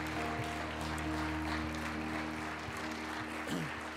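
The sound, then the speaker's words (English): An audience claps and cheers in a steady, dense wash of applause with scattered whoops, holding at an even level throughout while a low sustained tone hums underneath. “Can we put our hands together and give God a cheer today?”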